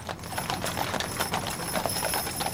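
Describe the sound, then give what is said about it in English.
Hooves of a horse-drawn carriage clip-clop in a steady, even rhythm at moderate volume, with a faint constant background hiss and no voices. “In the 1800s, the mode of transportation was the horse-drawn carriage.”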